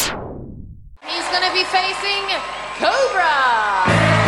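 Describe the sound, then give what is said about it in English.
A loud crowd cheers after a brief decaying sound, with many overlapping voices whooping and shouting, some swooping up and down in pitch, swelling toward the end. “Hissing for this snake, just cheers from the crowd.”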